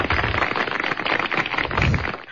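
A crackling applause sound effect inserted with a call recorder app's sound feature: dense, continuous pops and snaps at a steady loudness that sound more like popping corn or sizzling bacon than clapping hands, with no voices.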